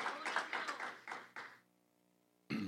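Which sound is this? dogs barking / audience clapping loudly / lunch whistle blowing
audience clapping loudly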